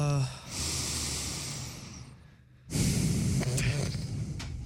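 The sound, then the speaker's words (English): A person sniffs loudly right up against a microphone, two long, airy, breathy inhales with a short quiet gap between them, harsh. “How's that mic smell? Sniffing that thing.”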